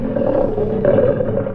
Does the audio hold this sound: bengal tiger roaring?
yes